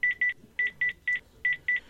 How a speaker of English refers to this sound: Darling, there's my watch ringing. Touch the screen to wake the screen up. Answer. Incoming call.